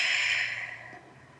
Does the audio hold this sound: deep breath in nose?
yes